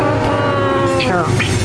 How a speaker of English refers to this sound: Can we cue the train whistle? Hey, I see the light.